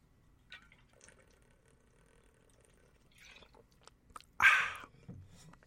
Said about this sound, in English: Sorry, water break.